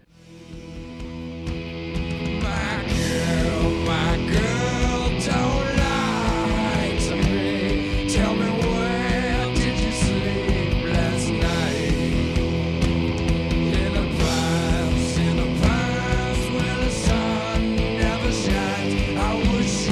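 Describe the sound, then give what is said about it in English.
A loud, dense grunge rock recording plays throughout, with thick distorted guitars, steady drums and a wavering sung vocal line, with screaming vocals at the end, staying full and driving from start to finish. “I think that's like the ultimate grunge version.”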